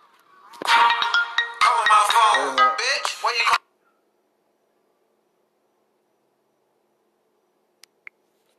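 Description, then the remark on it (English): A phone ringtone plays loudly for about three seconds as a bright, busy melodic burst, then cuts off abruptly into silence broken only by two faint clicks. “you heard my own ringtone?”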